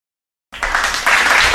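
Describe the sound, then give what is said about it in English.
After half a second of silence, a burst of crowd applause and cheering kicks in abruptly, loud and dense, swelling slightly near the end; a canned applause sound effect played from an applause button. “Can I get the applause button?”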